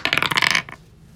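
Dice rattle and clatter across a hard surface in a quick burst of sharp clicks for about half a second, then settle into quiet; the dice are rolled for a perception roll in a tabletop role-playing game.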